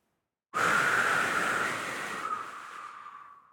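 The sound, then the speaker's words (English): A single long, breathy exhalation blown out through the mouth into the crown of the head, steady, with a soft whistling tone, slowly fading over about three seconds. No talking. “Blowing into your crown.”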